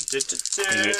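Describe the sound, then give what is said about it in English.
A black die clatters and rattles in quick repeated bursts as it is rolled for a hard difficulty check, fairly loud, lasting about a second, with a voice murmuring faintly underneath. “But I use a black dice to make it even harder.”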